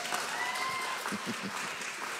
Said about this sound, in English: He's going to do it at every campus. They're all clapping and shouting. I can hear them through the screen right now. Amen.